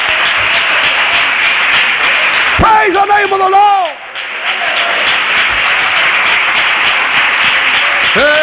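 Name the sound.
audience round of applause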